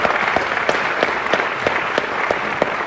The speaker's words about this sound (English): Let's have a round of applause for One Foot in the Podcast!